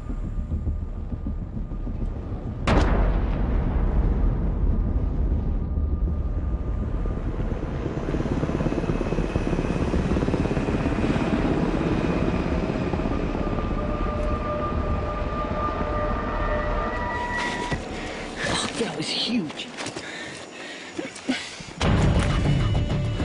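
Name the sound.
helicopters approaching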